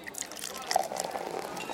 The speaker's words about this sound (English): A long silence stretched between us, only interrupted when the bartender poured us two new drinks.